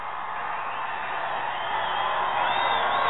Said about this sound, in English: That's two strikes on Headley. The crowd is going nuts.